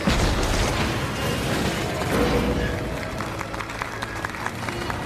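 A crowd applauding: a dense, steady wash of clapping that thins out in the second half, leaving sharper individual claps standing out.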